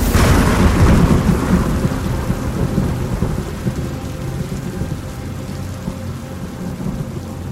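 thunder and heavy rain

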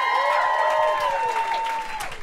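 audience applause

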